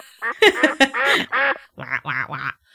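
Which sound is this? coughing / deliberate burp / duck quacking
duck quacking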